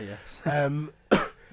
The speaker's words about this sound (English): there's a cough in there to make sure you understand.